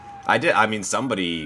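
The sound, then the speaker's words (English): A voice imitates a wailing police siren as a hot take sound effect, with short rising and falling tones, fairly loud, lasting about a second and a half. “Oh, here's our sirens. Our hot take sirens.”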